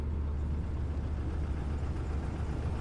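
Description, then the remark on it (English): A bus engine idles at a stop, a steady, deep rumble that holds even and unbroken for the whole stretch, with no voices over it. “Oh shit, the bus is here.”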